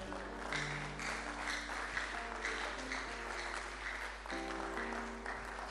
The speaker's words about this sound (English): Give Jesus a better clap offering. Clap your hands. Give him praise and give him thanks.